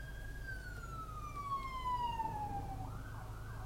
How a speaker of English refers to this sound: I have righted my past wrong, you guys. I got out of the way of that ambulance.